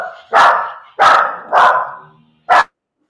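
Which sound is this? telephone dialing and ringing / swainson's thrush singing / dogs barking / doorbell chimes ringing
dogs barking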